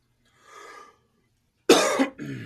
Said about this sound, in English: Ooh, I just coughed and I farted at the same time.